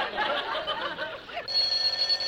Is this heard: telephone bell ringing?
yes